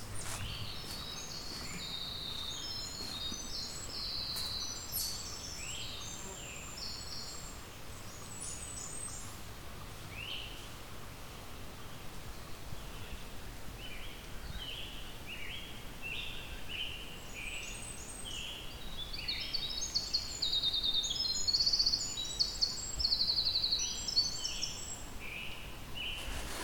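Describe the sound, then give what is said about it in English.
A winter wren in a wet forest lowland with skunk cabbage on the floor sings long, rapid cascades of high, tinkling trills and warbles, each song running 9-10 seconds, repeated twice over a soft, steady forest hush with no talking. “The winter wren has a very extensive song, goes on for 9-10 seconds.”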